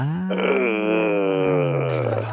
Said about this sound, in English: That was a little loud. I think you need to do it softer. What you had right there was more of a groan, which can be very bad.